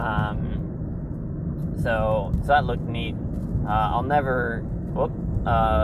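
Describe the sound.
A steady, low road rumble fills the inside of a moving Nissan Versa car, droning continuously beneath a person speaking in short bursts.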